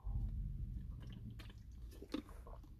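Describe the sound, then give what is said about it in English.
Wet mouth sounds of someone drinking water, with soft gulps and small clicks over a low rumble, no talking. “Sorry, I was drinking water.”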